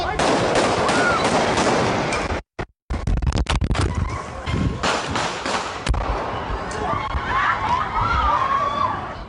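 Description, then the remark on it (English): A burst of about five sharp gunshots from an AK rifle cracks out, then a brief gap and about three more shots in a softer tone from a handgun fired from a car, over a noisy, rumbling background. “That sounds like five from the AK and then three from whatever gun the guy in the car had.”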